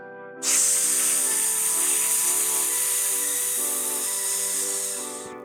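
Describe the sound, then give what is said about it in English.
A person exhales in one long, steady hiss, imitating a snake, during a breathing exercise called snake breathing. The sharp, airy sound starts abruptly, holds for about five seconds, then slowly fades as the breath runs out. “Then make a hissing snake sound as you breathe out slowly, like this.”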